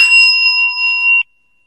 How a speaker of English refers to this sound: Listen to this bell.